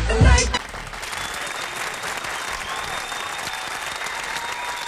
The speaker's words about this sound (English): I'm sorry, I really like those hand claps. They make you feel warm and fuzzy. They just make you feel so nice. Everybody, clap, clap, clap.